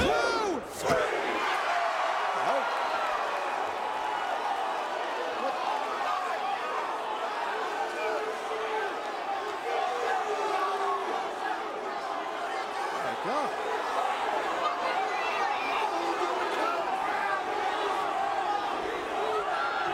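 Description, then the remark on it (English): A large wrestling arena crowd roars and cheers wildly without letup, a dense wall of shouting voices sustained at high volume for the whole stretch, with occasional louder swells. “But even still, they lose their shit.”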